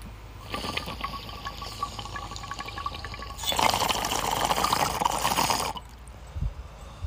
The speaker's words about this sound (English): I'm smoking my Parashop bong. I don't think I've cleaned it since 420. I think I changed the water, but I don't think I cleaned it. So, like, the downstem is a little bit clogged.